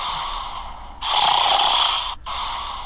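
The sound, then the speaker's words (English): A person makes a loud, rasping snoring imitation: a long harsh snort, a brief break, then another breathy rumble, with no talking. “I'm snoring. Snoring? Tell me you used your phone to make that noise.”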